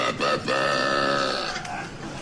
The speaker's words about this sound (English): this is a jingle from a very famous ad, but it's except this person decides to burp it, I think.